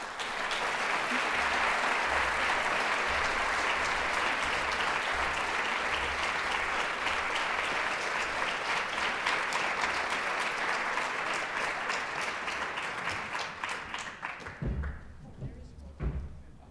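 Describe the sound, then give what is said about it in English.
A crowd claps loudly and steadily for about fourteen seconds, welcoming three artists on stage, a dense wash of many hands, before the applause thins out and fades with a few scattered thumps at the end. “So would you please join me in welcoming our three artists on stage.”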